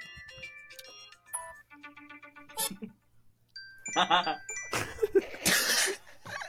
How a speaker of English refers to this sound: No, that's my fucking wake-up alarm sound.